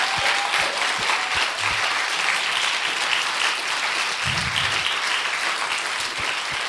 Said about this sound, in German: Und komm, ich gebe doch heute mal einen grossen Applaus für alle Väter. Danke vielmals.